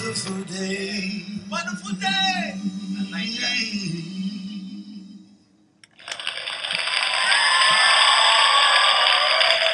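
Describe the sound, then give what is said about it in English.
A sung melody with music fades out, and after a brief pause loud, dense hand clapping bursts in and continues steadily to the end. “Were you clapping for my excellent audio post of the hand claps coming in right at the end?”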